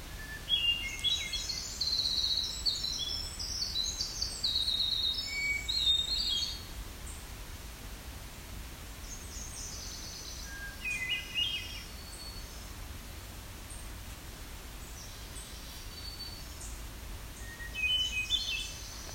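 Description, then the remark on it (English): Several birds chirp and twitter in a dense burst of high calls over the first few seconds, then scattered chirps return near the middle and end against a steady outdoor hiss. “Finally snuck in between these other birds.”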